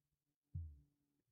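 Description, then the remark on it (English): A single low, soft thump like a phone's haptic heartbeat pulse, a brief muffled buzz from a phone on its setup screen before accessibility is enabled, held close to the mic; it fades quickly into near silence, with no voices. “I'm still waiting, and now I felt that beep, or that heartbeat. I'm going to bring it a little bit closer to the mic and see if you could hear it.”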